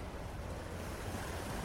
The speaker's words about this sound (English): leaving only the pounding and the shushing of waves to fill the auditorium as she began the second movement of the piece.